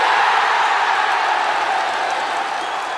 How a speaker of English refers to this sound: Isn't that one of the most damning indictments of a show you've ever heard, where somebody involved has brought crowd noise with them? It's still going as well.